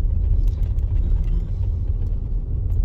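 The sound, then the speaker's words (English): A steady low engine rumble from inside a car driving slowly into an empty car park by a lake, with faint tyre noise and small knocks over a continuous drone. “Right, well, this car park, we've got no one in it, so we're going to park up in here and get a good view from a few swims here, up and down a few points and around a bit.”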